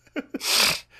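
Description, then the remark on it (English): Two quick, short nasal bursts followed by a longer, loud, breathy rush of air, like a hard snort or sharp inhale, with no talking over it. “And the snorting. Yeah, sorry about that.”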